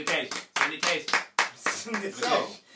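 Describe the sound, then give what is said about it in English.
Clapping: a string of sharp, uneven claps over roughly three seconds, mixed with voices talking and exclaiming at the same time. “Can we get a clap for that one?”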